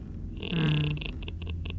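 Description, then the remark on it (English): A voice imitates a dry, dead tree creaking in the wind: a strained, groaning creak that holds a low pitch, then breaks into a few short rasping pulses, fairly loud with no other talking. “It's that sound of, you know, when you have like a really dry dead tree in a windy place and you have that sort of like...”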